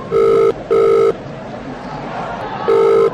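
A mobile phone rings in a double-burst pattern, two quick electronic tones, a pause, then a third, loud and steady over a low murmur of background noise, as a call is put in to Felipe Massa on his way to the podium.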